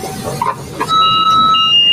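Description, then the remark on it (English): Electronic beeping kicks in partway through as a loud, sustained high-pitched tone that holds steady and then steps up in pitch, with faint background clatter and no talking. “It's funny that you hear the sounds of beeping, and if you eat too much of this, you'll hear more sounds of beeping from your hospital.”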